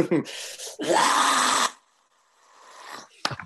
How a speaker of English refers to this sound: Hey, can we get a scream before you go?